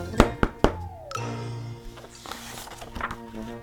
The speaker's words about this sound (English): Bear was admiring his cupcakes when there was a loud knock on his front door.